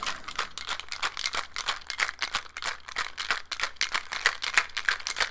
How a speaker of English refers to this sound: And it doesn't smell anything special, but we'll see how it is in a cocktail. So let me shake it real quick.